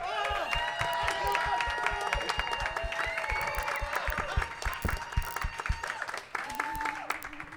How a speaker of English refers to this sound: So we will start with Savage Tech by applause. Savage Tech.